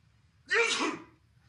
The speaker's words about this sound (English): I sneezed. Oh, I'm not allowed to sneeze.